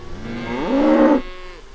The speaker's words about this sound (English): In one of Tyler's fields, cattle are being herded. The dust floats over to where we're standing. Tyler's decided to keep some of his fields fallow, and the cattle grazing helps with restoring the soil.